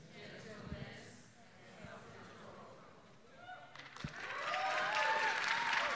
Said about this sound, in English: Look at y'all, you're like, I'm gonna clap for myself.